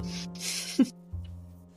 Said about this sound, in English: It is soothing. It's soothing snores.